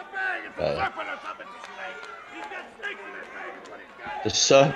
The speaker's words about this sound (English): Listen to the people chant, Jake, Jake, Jake.